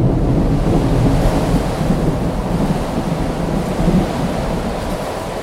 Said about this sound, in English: Thus speaking, and having carefully shaded his lamp, he hurried me to one of the casements and threw it freely open to the storm.